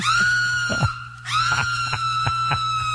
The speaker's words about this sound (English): No. No. No. And the screaming starts. You can hear it. We have tape of it.